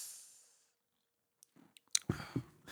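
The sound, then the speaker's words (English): A sip of an Imperial IPA beer: a soft airy hiss fades into silence, then small wet mouth clicks, a slurp and a swallow follow in quick succession. “But I'm going to take a sip.”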